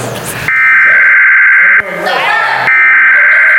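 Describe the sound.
A loud, steady two-tone emergency alert blares in sustained stretches, briefly cut by a short burst of garbled broadcast speech before the harsh, buzzing tone resumes.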